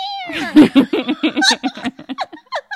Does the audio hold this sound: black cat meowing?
yes